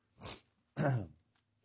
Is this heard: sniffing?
yes